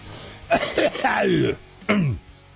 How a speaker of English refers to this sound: But first, let me offer you a really gross cough on the air, just like I did. Yeah, right there.